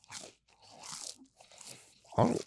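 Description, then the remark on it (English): Crisp crunching bites into a footlong churro from Subway, several textured chews in quick bursts, followed by a short voiced murmur near the end. “I want you to taste it to tell me if it really does taste like cinnamon.”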